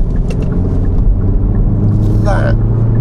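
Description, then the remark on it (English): A car engine drones loudly and steadily as the car drives around a very tight, fast roundabout, with a brief high-pitched squeal rising near the end. “I'm driving around a very tight, fast roundabout at the moment.”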